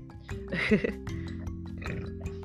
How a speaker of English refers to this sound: Belch.